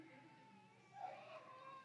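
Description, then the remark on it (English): A baby cries faintly in the audience during a Bible sermon, one thin, wavering wail rising over a low murmur. “As long as it's not my child crying, it's all right.”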